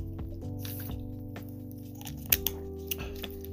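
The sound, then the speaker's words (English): Someone takes a quick swig of water, with soft wet swallowing and a few sharp little clicks, quiet over a steady low hum, with no talking. “Let me take a swig of this water real quick.”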